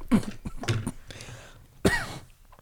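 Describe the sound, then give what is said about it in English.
A fit of harsh, sputtering coughs, three or four bursts in quick succession with a short throaty gasp between them, loud and raspy as someone chokes on spicy water that went down the wrong tube. “It went down the wrong tube, but it was spicy water.”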